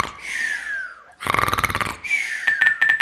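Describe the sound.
A voice performs an exaggerated, loud snore: a whistling breath, a buzzing, rattling snort, then another high whistle with fluttering pulses. No talking.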